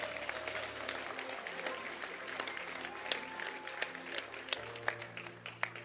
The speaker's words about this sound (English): Clap your hands for him.